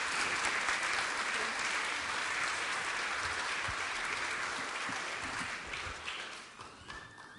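A large gathering applauds steadily, dense clapping filling the room at full strength before gradually thinning and fading toward the end.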